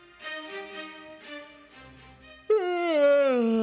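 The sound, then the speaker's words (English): An exaggerated, deliberate yawn: after a couple of seconds of softer voiced murmuring, a loud drawn-out vocal groan begins abruptly and slowly slides downward in pitch, holding steady to the end. “That was a dramatic intentional yawn because that's basically what this entire week was.”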